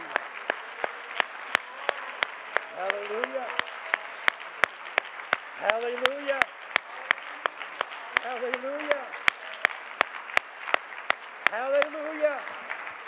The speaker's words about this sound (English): I'm going to lay this mic down for a moment. I'm going to ask you to join me in clapping your hands for the goodness of Almighty God and how wonderful and how great he is.